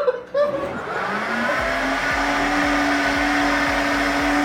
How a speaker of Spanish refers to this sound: ¡Ah! Y esta porque se le monta la licuadora.